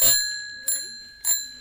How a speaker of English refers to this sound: The metal bike jingle bell?